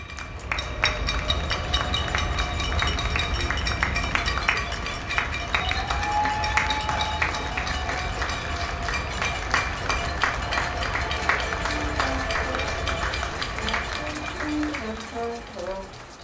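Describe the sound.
A recording of the nightly cheering for healthcare workers in Barcelona and Toronto: a crowd claps and cheers steadily for the whole stretch, with dense overlapping hand claps, scattered shouts and voices, a whistle midway, and a few ringing tones near the end.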